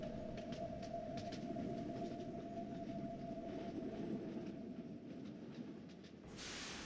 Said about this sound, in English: Some say this is what occurs in Garden as trains travel over the stretch of old railroad track, resulting in the infamous ghost light.